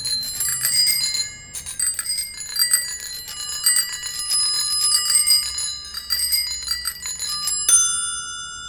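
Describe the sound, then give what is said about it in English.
Six bicycle bells mounted on a candlestick, an object called the Skippenspiel made by Amanda Palmer and Neil Gaiman, ring rapidly and continuously, their bright metallic trills overlapping in a dense jangle, fairly loud, before a final ring lingers and fades on its own. “What it is a candlestick with 1, 2, 3, 4, 5, 6 bicycle bells.”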